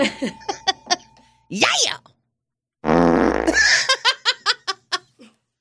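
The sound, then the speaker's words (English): A loud, wet, drawn-out fart blasts for about a second, sandwiched between bursts of giggling and rhythmic, close-up laughter from several people. “Did he let a fart out? Yes.”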